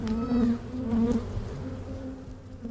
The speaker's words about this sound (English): thank you so much for taking me into this unknown part of the swamp exhibit where the bees live.